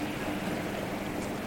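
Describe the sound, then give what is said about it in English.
A boat coming in toward a jetty on calm, clean water gives a steady, even wash of engine rumble and lapping water, continuous and moderately loud, with no clear change in distance across the short stretch. “And here comes the boat.”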